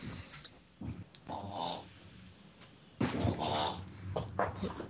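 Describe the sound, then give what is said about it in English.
A dog plays with a pig toy, making snuffling grunts and snorts mixed with squeaky, oinking toy noises in a few uneven bursts, louder toward the end. “It's a pig his dog he's playing with.”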